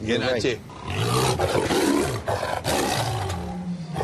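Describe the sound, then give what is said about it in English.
A captured Sumatran man-eating tiger in a cage gives a deep, rumbling roar, the growl rising and falling in several surges over a few seconds, loud and raw with some background murmur. “one of the captured Sumatran man-eating tigers in a cage.”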